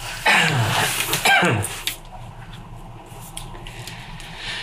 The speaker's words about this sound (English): Sorry about this. No problem, dude. That's the world of podcasting. You can do whatever the hell you want. Cough blood.